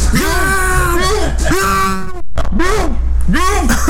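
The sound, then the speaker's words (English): A voice imitates a muffled scream through a sock stuffed in the mouth, trying to scream help: several strained, wavering hum-like cries in quick succession, loud, with a brief gasp in the middle, all without clear words. “It's actually the sock in their mouth. They're trying to scream help, but it's like no.”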